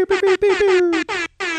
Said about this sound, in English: Woo! Air horns.